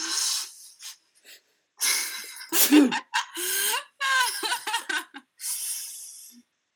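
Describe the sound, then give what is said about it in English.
Breathy inhales build up to one sharp, explosive sneeze, followed by a few strained, wavering vocal sounds and more heavy breaths. “I'm gonna sneeze.”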